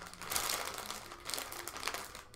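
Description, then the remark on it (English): Crinkly plastic of a chip bag being unwrapped, a steady crackling rustle with bright sharp bursts around half a second in and again near the end, with no talking. “And now you're going to unwrap it.”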